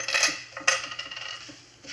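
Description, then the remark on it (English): Metal keys and coins taken out of a person's pockets clatter onto a hard surface, with a sharp jingling burst at the start and another near the middle, followed by a few lighter clinks settling down. No voices. “All right. Keys.”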